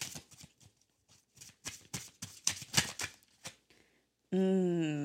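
A deck of cards being shuffled for a card reading, a run of crisp, irregular riffling flutters and slaps for several seconds, then a sudden loud, steady tone cuts in at the end.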